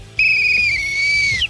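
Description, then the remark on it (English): A single sustained whistle, steady and fairly loud, holding one pitch for over a second before dipping slightly at the end, with no voices. “So that's the weak whistle?”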